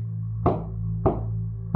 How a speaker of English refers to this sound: The sounds were moving. Keeping her ear to the floor, she followed the thumps across the floorboards, up the wall, out her door, and down the hall, and there they stopped.